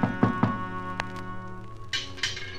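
Three quick, solid knocks on the front door of a house in a tight burst, fairly loud, over a steady musical backdrop, followed by a few fainter scuffs and taps.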